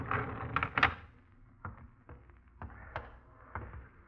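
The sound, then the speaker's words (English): An elevator door rattles open with a burst of clattering at the start, followed by several sharp metallic clunks and knocks spaced out over a few seconds, in an elevator going down to a basement. “Get the door.”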